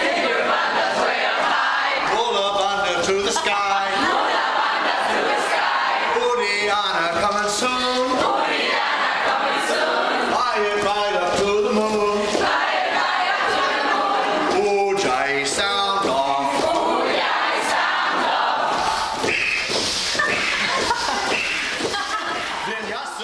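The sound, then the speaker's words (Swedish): A loud crowd shouts the chant "Keep your bandas way up high" in unison, repeating rhythmic phrases in bursts with brief pauses between them, the mass of voices staying strong and steady throughout. “Så skrek alla då 150 pass.”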